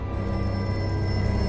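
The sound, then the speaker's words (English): A telephone rings steadily and fairly loudly, a sustained bright trill that carries on without a break, with no talking over it. “That damn ringing.”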